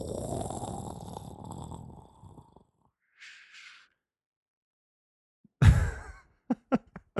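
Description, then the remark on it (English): A voice imitates rain with distant thunder: a long low breathy rumble, a short soft hiss, then a loud burst followed by a few sharp, quick clicks like drops, with no words. “That was my rain with distant thunder, you know, way in the distant horizon.”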